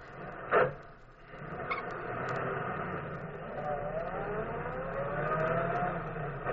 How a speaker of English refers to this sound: Easy, darling. Now I'll start the car.